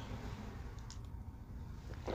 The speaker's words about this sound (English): Man, oh man, I'm going to have a little sip of my coffee here, and then we're going to start the episode.